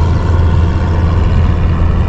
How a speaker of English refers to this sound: Might have to wait till the helicopter passes. It's one of those tiny ones. I think it's one of those personal helicopters. It looks like one or two people fit in there. Probably two people, and that's it.